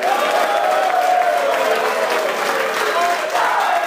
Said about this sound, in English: it was unanimous that our winner today, and you can applaud if you like, our winner today of the first annual App State Caught in the Act Award